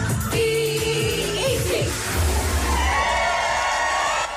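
A crowd cheers loudly and continuously for several seconds, a dense roar of many voices with scattered higher shouts rising above it.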